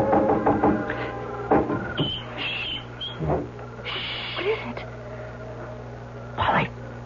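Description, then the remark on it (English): A few soft, quick knocks on a window by someone standing on a porch roof near the start, followed by scattered rustles and thumps over a steady low hum. “was up on the porch roof in a moment, knocking at Polly's window gently”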